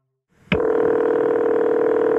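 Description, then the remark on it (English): After a short click, a loud, steady electronic telephone tone switches on abruptly and holds unbroken to the end, with no voices: a frantic call coming in to 911 dispatchers in Springfield, Illinois, late on the afternoon of August 29th, 1995. “It's late on the afternoon of August 29th, 1995, when 911 dispatchers in Springfield, Illinois, get a frantic phone call.”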